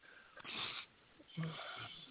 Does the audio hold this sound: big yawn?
yes